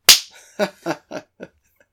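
A single sharp, loud hand slap of a high five cracks out at the start, followed by four softer, evenly spaced bursts that fade away one after another.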